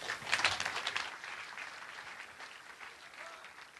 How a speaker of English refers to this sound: Please give yourself a big round of applause.